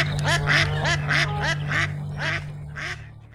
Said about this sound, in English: Oh, that quack is fading fast.